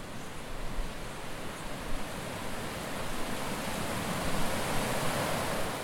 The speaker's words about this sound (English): I sort of meandered about with all of this new information packed into my head and followed the sounds of a rushing river nearby.